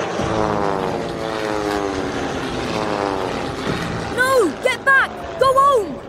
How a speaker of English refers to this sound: From the other side of the hill comes the distant roar of engines, quiet at first but growing louder. An unsettling noise that within seconds reveals its origin. A squadron of German Luftwaffe planes.